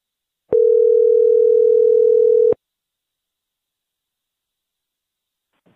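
telephone ringing

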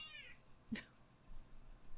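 cat meowing

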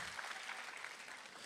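audience applause

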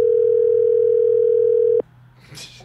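phone call ringing out

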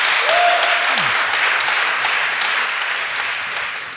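audience clapping

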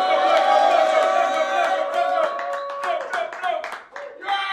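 crowd cheering

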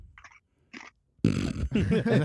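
crunching ice

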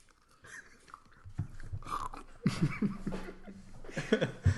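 crunchy chewing of food

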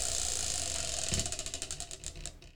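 spinning wheel clicking

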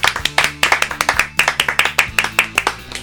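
hands clapping

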